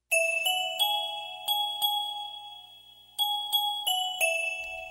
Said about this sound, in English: Bike bells, doorbells, typewriter bells, fire bells, alarm clock bells. Bells trickle through the calendar, tinkling down the days almost ignored until November dies.